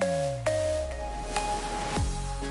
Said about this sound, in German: Ding dong, Kasse 3 öffnet für Sie.